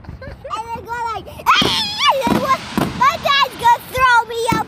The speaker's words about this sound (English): So we are out here live watching fireworks, just trying to make sure that we enjoy the 4th of July for what it's worth.